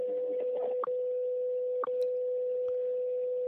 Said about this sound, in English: That's the 30-second mark there. You hear that slightly longer pip at the 30-second mark.